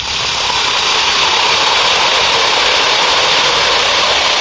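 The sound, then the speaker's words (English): An Alka-Seltzer effervescent antacid tablet fizzing in water: a steady, bright hiss of tiny bubbles holds at an even, fairly loud level for several seconds, with no voices over it. “brought to you by the makers of Alka-Seltzer. Now, listen to it fizz.”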